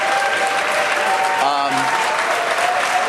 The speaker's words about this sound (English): we got the opening bell here, of course, and you can take a look.